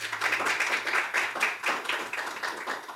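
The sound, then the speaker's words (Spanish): A crowd claps hands for the Lord in a steady, fairly quick rhythm, the many overlapping claps forming a continuous, moderately loud patter that carries on for the whole stretch without any talking. “Vamos a dar palmas al Señor.”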